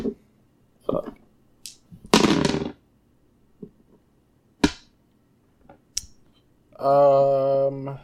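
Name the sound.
percentile dice being rolled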